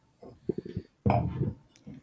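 Wine poured into a glass: a few soft taps and clinks of glassware, then a short burst of splashing liquid lasting about half a second, followed by a faint bright clink.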